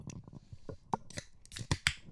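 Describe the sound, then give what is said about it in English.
Beer cans being cracked open in a recording studio: a string of sharp clicking pops, several in quick succession, each followed by a brief bright fizzing hiss, with some clinking and handling noise between them. “And so this is where we crack beers.”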